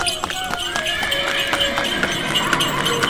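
Rapid, evenly spaced hoofbeats of a horse-drawn cart running across an open field, steady, with clattering percussive hits over a busy, bright rattle that never lets up.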